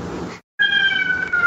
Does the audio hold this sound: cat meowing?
yes